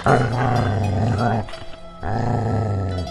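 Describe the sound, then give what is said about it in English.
A dog stands up and growls low and loud in two sustained rumbling bursts, the first about a second and a half long, a brief pause, then a second growl of similar length. “As he was starting to draw his eyes, the dog stood up and growled.”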